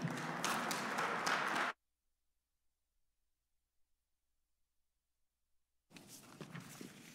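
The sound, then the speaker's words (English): A loud burst of crowd applause welcoming the first presenter of a morning program, a dense crackle of many hands, stops abruptly; after several seconds of silence, a second, softer stretch of clapping begins. “With that being said, brothers and sisters, please welcome our first presenter this morning with a round of applause,”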